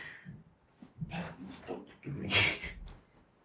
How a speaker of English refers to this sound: There's a puppy under the table licking my leg at this point. Yeah. It's kind of gross because he sneaks up on you and like licks your feet or licks your leg when you don't see him.